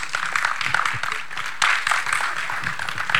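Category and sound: crowd, audience hand clapping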